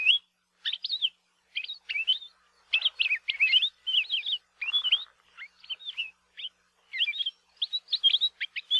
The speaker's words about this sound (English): One of the grad students in our lab at UH Hilo is currently studying the vocalizations of the palila and has found they have an incredible variety of songs and calls. Here are just a few.